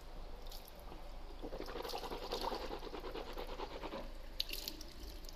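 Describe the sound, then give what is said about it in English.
Water runs steadily from a bathroom tap for several seconds, with a burst of splashing and swishing in the middle as someone rinses their mouth at the sink, then the flow continues quietly. “Sorry, I had to rinse my mouth.”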